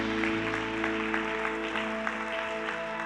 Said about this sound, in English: Kind of awkward, isn't it, where you got to play your own applause?